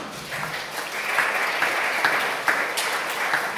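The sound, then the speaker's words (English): A crowd applauds steadily to thank the people catering in the kitchen, a dense wash of clapping that holds at an even, moderate level throughout with a few sharper individual claps standing out. “we should have a wee round of applause and a wee thank you to the Marthas in the kitchen.”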